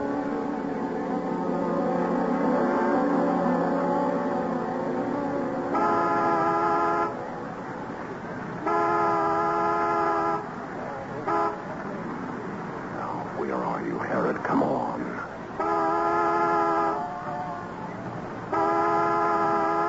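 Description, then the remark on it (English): A car horn honks repeatedly as a reminder signal, loud, in a mix of longer blasts and shorter toots separated by brief gaps, over a steady rumble of background noise. “And if one of us is late, honk the horn as a reminder.”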